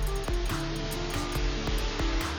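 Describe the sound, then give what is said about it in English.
A polishing wheel buffs minor scratches out of a car hood, its motor giving a steady, humming whine with a low drone. Brief swishing pulses recur every fraction of a second as the pad sweeps across the surface. “We're also going to add the sound of the polishing wheel because I have to wheel out some minor scratches that appeared on my wife's car hood while we get into this next part.”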